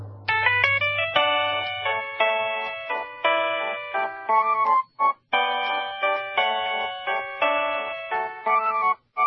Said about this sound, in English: Now, this week's number one ringtone. Number one. For the third week in a row, Waltz of the Flowers.